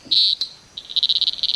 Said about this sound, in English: It is small. It's really small. It's a very weirdly artificial sounding frog. In the sense that it doesn't. It almost doesn't sound organic. Like not coming from a creature.